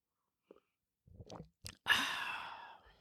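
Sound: sipping coffee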